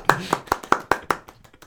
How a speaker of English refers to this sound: Just do a Shia LaBeouf, just claps solidly for 10 minutes.